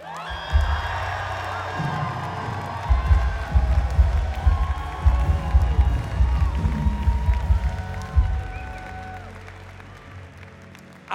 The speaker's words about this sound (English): And since we're applauding, come on, one more time, can we just give a loud shout for Jesus?